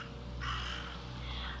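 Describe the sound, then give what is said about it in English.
A single harsh caw from a raven or crow rings out and holds for about a second over a low steady hum, clear, with no one talking. “There are still ravens hanging around. Or maybe it's a crow.”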